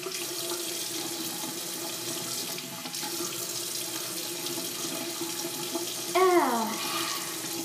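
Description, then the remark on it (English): A faucet runs steadily into a sink with a broad, hissing wash of tap water while someone washes their face, and a brief rising-falling squeak breaks through near the end, fairly loud throughout. “I actually already took my shower, but now I'm going to be washing my face because I don't want pimples.”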